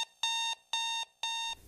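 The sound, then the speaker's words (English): An alarm clock beeps three times in a steady, evenly spaced rhythm, each tone bright, electronic and sustained briefly, clear with no voices. “Your alarm's been going off for ages.”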